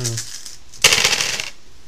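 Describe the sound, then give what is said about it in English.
A short voice fragment, then a bright clatter of dice rolling and tumbling across a tabletop for about half a second before quickly settling into quiet. “So you got the right amount of dice. Okay. Roll it and smash that.”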